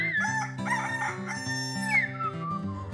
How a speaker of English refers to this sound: Birdie is making friends with a rooster.